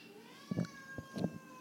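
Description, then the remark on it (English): Monty the cat meows twice in quick succession, short nasal calls with a faint steady hum underneath and no talking. “If Monty the cat has a lot of strong opinions on the restaurant thing.”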